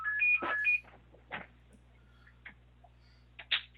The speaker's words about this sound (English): Sorry, I was just turning off the phone there. Big problem. But, you know, I apologize. I meant to turn that off beforehand.